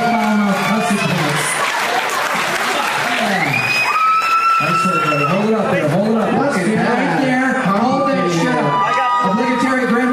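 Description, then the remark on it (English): A crowd bursts into loud applause for the audience's name tags, with cheers and a few whistles, the clapping thinning out as several people start talking and laughing over it. “You guys, I have a round of applause for all these amazing fucking name tags you guys did.”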